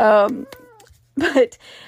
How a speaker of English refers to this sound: This is what the cat does to me all day long. He comes and talks to me, and I talk back.